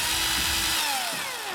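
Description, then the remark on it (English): A power drill runs loud for a second or two, its steady whirring whine dropping slightly in pitch as the motor winds down near the end. “Drill. Drill.”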